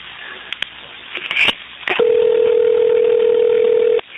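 A few faint clicks and handling noises on a phone line, followed by a steady, loud telephone dial tone that hums continuously for about two seconds before cutting off abruptly, as an outgoing call is placed at 3:49 on October 5th to return a phone call.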